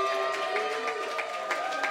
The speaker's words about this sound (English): So give a huge round of applause